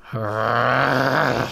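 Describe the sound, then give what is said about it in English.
A person imitates a werewolf's deep, sustained growl, one low rumbling note held for over a second at steady loudness, with no other sounds around it. “He let out a deep growl.”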